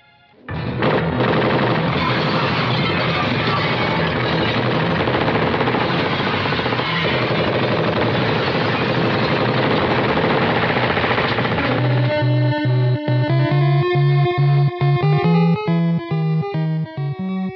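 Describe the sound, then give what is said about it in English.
Theme music from the NES video game Die Hard: a long stretch of loud, harsh, rapid-fire noise bursts like gunfire, then a bright chiptune melody of clean stepping tones over a buzzy bass, with no talking. “So that is the theme music from Die Hard for NES.”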